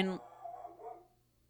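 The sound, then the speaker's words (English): A dog gives one sharp bark, followed by about a second of softer, wavering vocal grumbling that trails off into quiet. “Even the dog is upset by the dog bone shaped apparently track.”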